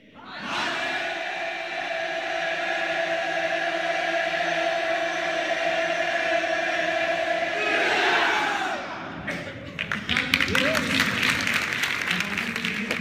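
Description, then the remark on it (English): A large crowd lets out a loud, sustained battle-cry yell as a benediction for about eight seconds, then breaks into rapid clapping and scattered cheering. “And here is their battle cry yell that they used for the benediction that parenthetically we're going to use today as their way of getting ready to go out into the world.”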